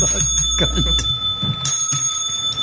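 A bell rings steadily with a sustained, bright metallic tone that holds throughout, fairly loud, with faint murmuring and bumps underneath.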